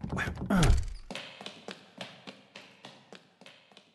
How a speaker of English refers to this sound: This is what I get for coming in at the very last minute. Crap, well, won't this freaking door open?